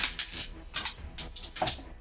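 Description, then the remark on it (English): A small die, rolled during a tabletop role-playing game, drops and clatters across a hard surface, a quick series of sharp, bright clicks and rattles that trail off as it rolls away underneath a mini fridge. “Oh, it went underneath the mini fridge.”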